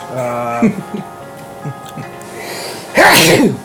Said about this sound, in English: another sneeze for me to edit out.